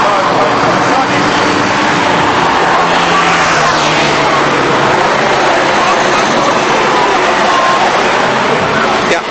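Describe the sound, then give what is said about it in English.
Cars carrying spare wheels roar past in a steady, loud wash of engine noise, with rising and falling engine tones sweeping by amid a busy crowd murmuring throughout. “Here come all the cars with the spares on.”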